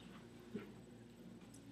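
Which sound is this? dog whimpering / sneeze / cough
dog whimpering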